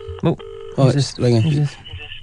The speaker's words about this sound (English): I've just got a phone at the house. You're right, I'll phone it. Oh, hello. Oh, it's ringing. It's ringing.